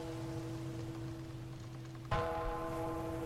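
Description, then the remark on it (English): A steady tonal hum, then a single bell strike rings out clearly partway through and keeps ringing with a sustained, humming tail. No one speaks. “A bell rang three times”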